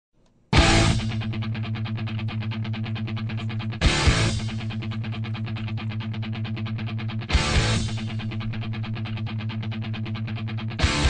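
Distorted electric guitar plays loud, sustained rock chords, struck again roughly every three and a half seconds with a heavy attack that rings out between hits. No voices are heard.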